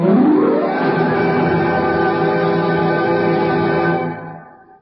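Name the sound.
wind howling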